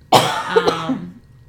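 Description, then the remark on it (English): A single loud cough bursts out sharply, then trails off into a rough, throaty rasp lasting about a second, with no talking around it. “It's because I coughed, right?”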